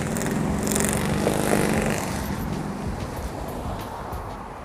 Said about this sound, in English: this man on this motorcycle. Nice bike.